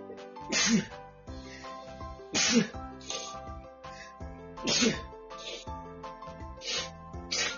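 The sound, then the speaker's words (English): A fit of sneezing: three loud sneezes spaced a couple of seconds apart, with smaller sniffly bursts between, over steady background music. “Seems like I got hit by a tiff of sneezing.”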